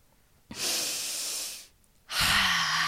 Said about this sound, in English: It's pretty powerful stuff. So yes, deep breathing.